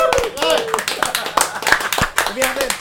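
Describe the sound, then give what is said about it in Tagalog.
An audience claps in irregular, overlapping bursts while voices shout and cheer on top, the applause staying fairly loud and busy for the whole stretch. “Palakpak na!”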